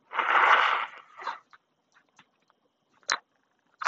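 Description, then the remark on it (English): A long, loud, honking nose blow, then a shorter second blow trailing off, followed by a few faint clicks and one brief, sharp sniff-like burst near the end. “I'm gonna blow my nose.”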